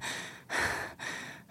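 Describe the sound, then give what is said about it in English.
A voice imitates heavy, gasping breaths, three or four loud, airy inhales and exhales in quick succession with short gaps between them, with no words. “It's like, you know, it's like the clenching of the chest and being like, and the breathing.”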